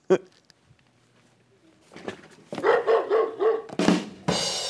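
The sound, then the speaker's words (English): A dog barks several times in quick succession, fairly loud, with a brief yip near the start and a burst of noise at the end. “Also on Thursday, there's Petco, and that's the aptly tickered woof.”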